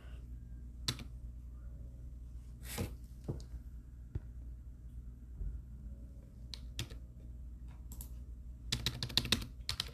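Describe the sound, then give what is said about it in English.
Scattered keystrokes on a computer keyboard, fairly quiet over a low hum, with single taps spaced out and then a quick burst of rapid typing near the end. “So I was like, why the fuck is my keyboard not working?”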